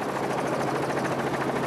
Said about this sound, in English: Helicopter pilot … is out on patrol surveying the tree-speckled savannah at Pilanesberg National Park in South Africa